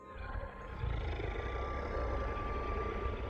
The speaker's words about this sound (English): The ghastly woman reached out one finger to touch my face, and a deep growl bellowed out from the woods beside me, just out of my view.